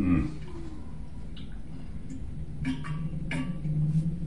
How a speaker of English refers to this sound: Let me just take a big swig of water from the biggest jug available.